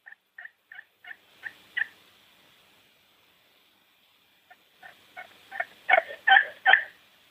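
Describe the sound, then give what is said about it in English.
A run of turkey hen yelps imitated on a Margaret slate call: six evenly spaced soft notes, a pause, then a second series that builds louder and raspier toward the end, with no talking. “And this is done on the Margaret slate.”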